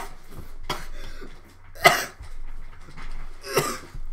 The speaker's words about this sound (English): Yes, I coughed.